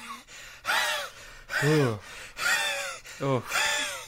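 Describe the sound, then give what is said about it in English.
A voice imitates a film character's laugh, which is made by breathing in: several exaggerated gasping, wheezy inhaled whoops in quick succession, loud, with pitch sliding up and down on each breath. “Now, if anybody's wondering why we keep doing the weird breathing in, one of the barbarians does that.”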